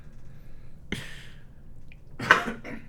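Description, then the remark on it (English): A sneeze: a short burst of breath, then a louder, fuller explosive sneeze about a second later, with no talking. “Bless you.”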